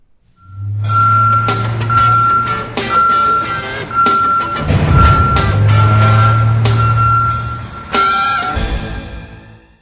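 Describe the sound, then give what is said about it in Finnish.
A garbage truck's reversing alarm beeps steadily over a heavy diesel engine rumble, with clanking metal and bangs from the machinery. No one speaks. “Lapiot käteen, kumisappaat jalkaan, roska-auton kyytiin. Tämä on kaatopaikka.”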